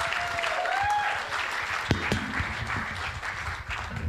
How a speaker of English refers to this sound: Why don't you put your hands together and welcome